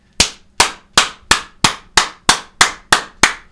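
A steady run of about ten sharp, loud hand claps, evenly spaced roughly two or three per second, each a crisp snap with a quick decay. No voices.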